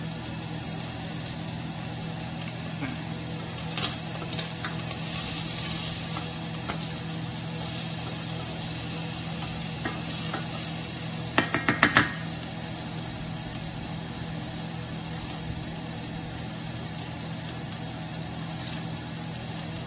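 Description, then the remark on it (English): Plum sizzles steadily in a hot pan as it softens, a constant hissing crackle with a quick cluster of sharp scraping clicks midway as it's stirred. No one speaks. “Plum is going around in there, just softening up a little bit.”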